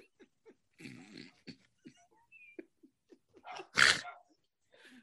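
A dog snuffles and huffs through its nose with short, scattered sniffs, then lets out one loud, sharp sneeze, followed by a few quieter snorts.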